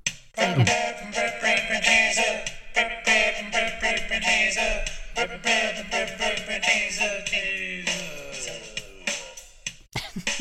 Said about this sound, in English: I noticed you used the train whistle by the thing. Yeah. So that's good. I think that perked it up a bit.